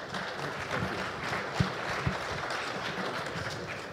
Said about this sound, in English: Everybody, round of applause for our moderator and our panelists.